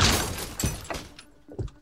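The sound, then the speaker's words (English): A loud crash of breaking glass bursts out at once as a man smashes a glass door inside a house in Reading, near London, followed by a few scattered clinks and thuds of falling shards that fade over about two seconds. No one speaks. “Gets to the house in Reading, and he went up and he smashed through the front door to the glass door, and he smashed that.”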